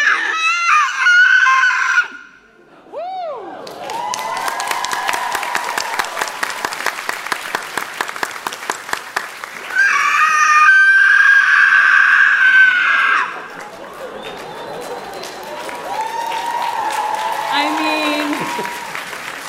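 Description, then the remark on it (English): A voice mimics the howl of the Shirsu monster with drawn-out, wavering wails that rise and fall in pitch, coming in several loud bursts over a steady crackling, rattling background noise. “The Shirsu lets out a howl.”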